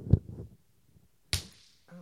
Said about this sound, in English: Okay, so just get over here. Okay. I'm going to slap you. All right. Okay?